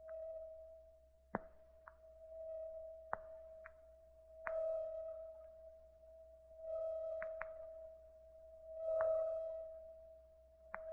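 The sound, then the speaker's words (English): A steady electronic hum holds one low-mid pitch throughout, swelling and fading in slow throbbing pulses, with a few sharp clicks and taps scattered across it. No voices. “When I awoke, there was a throbbing and humming in my head.”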